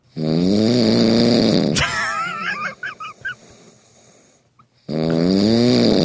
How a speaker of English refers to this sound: So I said, all right, the next time that I snore, take the iPhone and put it to my nose and record it. To which she did.